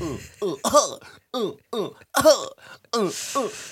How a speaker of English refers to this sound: Sorry, I pretend to cough and then I did cough